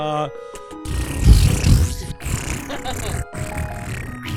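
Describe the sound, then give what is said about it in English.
A voice imitates a deflating balloon with a loud, fluttering, sputtering rasp that wavers in pitch for about three seconds, then trails off into breathy hissing. “Balloon deflating. That's what that one was.”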